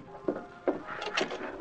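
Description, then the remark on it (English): A wooden closet door in a restaurant is opened, with a few dull knocks and clunks followed by a creaking, rubbing scrape as it swings. No voices are heard. “You get that closet door open.”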